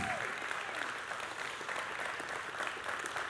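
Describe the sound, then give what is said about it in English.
A church audience claps steadily for its preachers, the applause dense and sustained with no distinct individual claps standing out, filling the space at moderate volume throughout. “give them a round of applause, too.”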